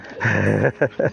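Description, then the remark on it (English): A small dog named Mia lets out a drawn-out, whiny whimper, then two quick, sharp yips, with no talking. “What's your doggy called?”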